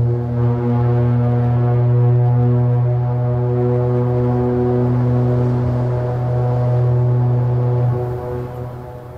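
A single long, deep foghorn blast drones steadily for about nine seconds, a loud, low, buzzing tone rich in overtones that holds nearly constant before easing off at the end.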